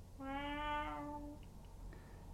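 A single drawn-out cat meow, about a second long, over a low steady background rumble, followed by quiet faint clicks.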